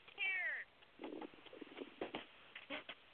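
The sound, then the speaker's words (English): A cat lets out one short, clear meow, followed by a few seconds of quieter, scattered rustling and shuffling sounds as it turns around and runs away. “Little Miss Kitty's turning around and running away.”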